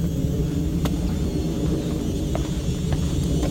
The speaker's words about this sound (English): It's got another airplane too.